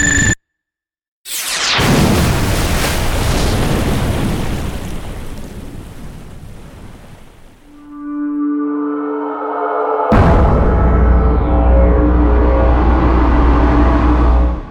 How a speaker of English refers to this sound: She ran for her life, barely registering the F-22 Raptor that was now in final approach and firing its last air-to-surface missile that would incinerate what remained of Irongate.